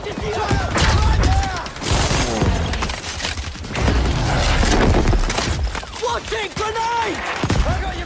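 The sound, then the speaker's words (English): Video game gunfire and explosions in 3D audio from Battlefield 5: rapid cracking shots and heavy booms overlap in a loud, dense, unbroken battle din, with soldiers' shouting voices rising and falling throughout. “For example, in Battlefield 5, there might be planes overhead, and soldiers shouting, and bullets flying from every direction.”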